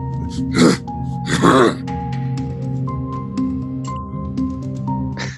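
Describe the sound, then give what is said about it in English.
A voice imitates two short, rough grunts in quick succession coming from a tree, fairly loud, over a steady low musical drone that continues alone afterward. “And as you stop to kind of like ascertain exactly what that was, you hear a grunting noise.”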